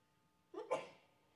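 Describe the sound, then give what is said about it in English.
A single sneeze bursts out, a short intake followed by a sharp, breathy explosion that quickly trails off into quiet, with no talking around it. “God bless you.”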